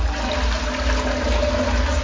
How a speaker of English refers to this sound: Not the strongest flush I've seen, but it's doing the job. But at least it's a one flush.